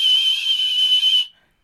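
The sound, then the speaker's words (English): A person whistles a single sustained, fairly loud note in imitation of whale song, holding a steady high pitch for just over a second before it abruptly stops, leaving silence. “Like, are you occasionally sort of do whale song? Like a whistle.”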